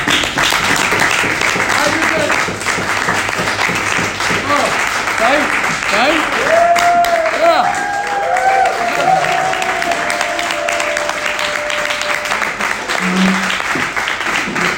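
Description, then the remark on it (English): An audience claps and cheers steadily for the whole stretch, a dense, loud wash of applause with voices shouting and whooping over it, including a few higher sustained yells midway. “The clap and the yes and the tafresh chavav and the sukkah is great.”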